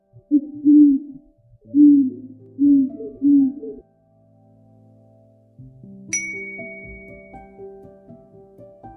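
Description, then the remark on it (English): An owl in cold woods hoots a low, rhythmic series of four calls, one long and three quicker ones, followed after a pause by a bright chiming ding that rings on under a soft tonal hum. “Pa raised his face to call out again, but before he could open his mouth, an echo came threading its way through the trees.”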